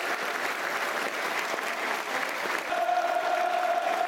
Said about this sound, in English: This is the 8th minute applause for Mavie May, passed away, sadly, just shortly after birth. This is 8 minute applause in honour of her and her family. Really good response around the den here.